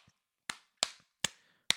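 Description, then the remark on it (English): Four sharp, loud hand claps at uneven intervals, each a crisp smack with a quick decay, made as sync claps for lining up audio. No talking in between. “I'm sync clapping for the audio.”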